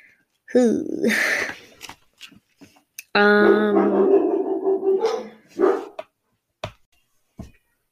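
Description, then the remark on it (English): The speaker's dogs bark repeatedly and loudly, sharp yaps in quick bursts followed by a long drawn-out howling bark, then a few fainter isolated barks trailing off. “So sorry, my damn dogs keep barking.”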